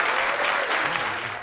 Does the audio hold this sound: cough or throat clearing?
no